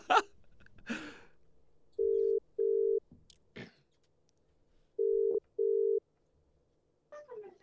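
A phone line ringing out on a call back to the speaker's mum: two pairs of steady, mid-pitched electronic ring tones, each a double burst, separated by a pause, with a few brief clicks and bumps around them.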